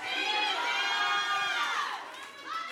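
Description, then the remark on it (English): A church audience, told by the preacher to shout the name that is above every name, shouts together in a loud, sustained roar of many overlapping voices, dipping briefly near the end before swelling up again. “Shout that name.”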